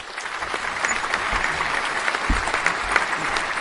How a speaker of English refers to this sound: Did you hear that? Everybody's out there. They're cheering.